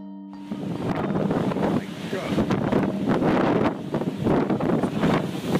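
Loud, roaring Hurricane Sandy storm wind buffets the microphone while rushing, surging storm-surge water churns underneath, swelling and easing in repeated gusts with no clear talk.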